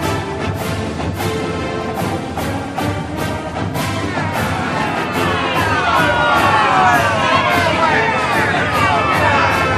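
A loud, rowdy, hostile studio audience shouts and jeers at the Minnesota Golden Groundhogs over a steady beat of sharp claps or stomps. The noise swells in the second half as shrill whistles and yells rise above the roar.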